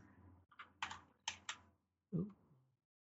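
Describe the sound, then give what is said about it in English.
A handful of crisp computer keyboard keystrokes tap out in an uneven rhythm over a low hum as someone types over another person, followed by a brief murmured vocal sound near the end. “No, I'm typing over someone.”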